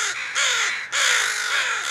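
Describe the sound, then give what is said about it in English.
A crow gives harsh, raspy alarm caws, two long grating calls back to back, loud, with no talking. “So in a nutshell, what a crow funeral looks like is the first bird that discovers the body will alarm call. So that's that really harsh cawing sound.”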